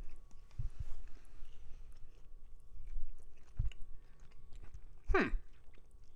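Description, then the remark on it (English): Soft chewing sounds with irregular mouth noises, then one sharper, louder crunching bite near the end. The chewing seems to come from two people eating at the same time, with no talking. “We're chewing at the same time.”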